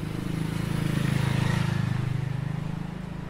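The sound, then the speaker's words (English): A motorcycle ridden by a man passes by, its low, throbbing engine drone swelling to a peak partway through and then easing off slightly, with no voices. “I'm going to start over because that guy on the motorcycle was funny to me.”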